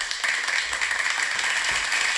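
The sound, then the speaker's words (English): A steady round of applause, many hands clapping together in a dense, continuous patter at moderate volume throughout, with no voices over it. “Round of applause.”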